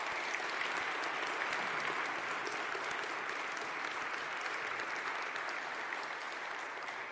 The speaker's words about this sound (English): And can we applaud them as well as they...